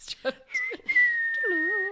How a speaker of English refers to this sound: Were you trying to do the whistle thing?